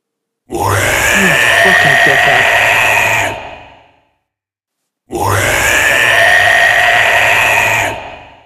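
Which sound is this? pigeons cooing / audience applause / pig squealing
pig squealing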